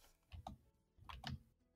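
Faint keyboard typing: a few soft key clicks in two short bursts separated by a brief pause, with no voices.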